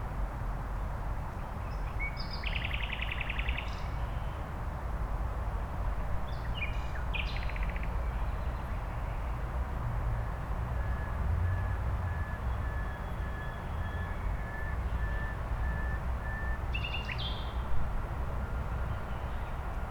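At least four nightingales sing in scattered bursts of chirps and trills, with one long drawn-out whistle, over a constant low rumble of background noise, in northwest Berlin around midnight.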